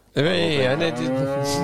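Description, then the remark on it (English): A single long, loud moo from a cow named Saul, sustained for over a second, deep and droning with a slight rise and fall in pitch before trailing off. “on the advice of our cow, Saul...”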